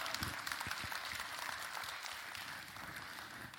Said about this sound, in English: we want to clap. All right, let's clap.